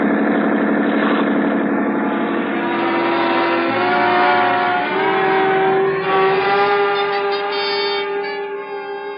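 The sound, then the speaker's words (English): A police boat's powerful engine roars steadily at high speed, loud, its pitch rising slightly as it drives on without pause; no voices. “A 20-minute start isn't much when a schooner with auxiliary power is matched against a police boat.”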